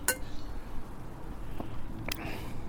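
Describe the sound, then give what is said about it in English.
Wine glasses holding Riesling clink together in a toast, a bright ringing chime at the start followed by a second clink near the end, over a quiet murmur. “We have a little breakfast Riesling in front of us before we move on to Pinot Noir. So cheers.”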